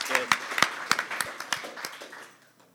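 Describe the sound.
A small audience claps in scattered, uneven bursts that taper off over a couple of seconds, with a hint of voices at the start.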